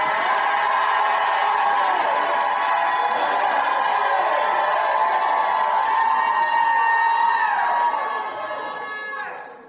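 An audience, called on to shout, shouts and cries out together in a sustained, loud roar of overlapping pitches, holding steady for several seconds before tapering off at the end.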